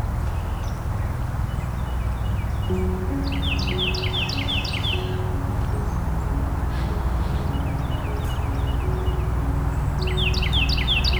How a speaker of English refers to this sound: Hairy woodpecker calling.